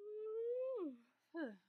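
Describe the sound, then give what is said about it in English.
A long, drawn-out yawn: a steady voiced tone that swells slightly, then slides downward and fades, followed by a short falling exhale. No one speaks. “There's the big yawn.”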